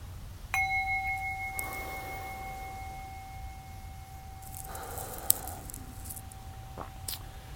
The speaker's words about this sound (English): So I'll just hit the gong a few times here intermittently, encourage you just to continue breathing, and I'll do a bit of a guided meditation here today.